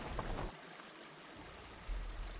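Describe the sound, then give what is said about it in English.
River water flows and laps steadily at a dock, a continuous rushing wash with a deeper low rumble that swells at the start and again near the end. No one speaks. “Until we reached a dock on the river,”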